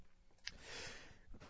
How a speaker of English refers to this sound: yes, I know, I'm coughing into the mic.